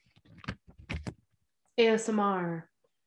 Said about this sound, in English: I don't know if you can hear the paper.